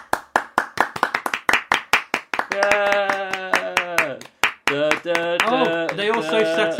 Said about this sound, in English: In this scene. We're done. We're clapping. It's like the end of the film.